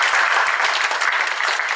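An audience at an event applauds with steady, dense clapping that stays loud and even throughout, a continuous wash of many hands with no voices standing out.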